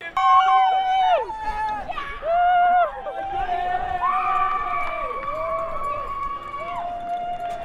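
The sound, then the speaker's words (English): A crowd yells and cheers loudly as a runner crosses the finish line at the Quad Rock race, with overlapping high-pitched shouts and sustained whoops rising and falling for several seconds. “he came through the finish line and they went wild. Everyone was yelling.”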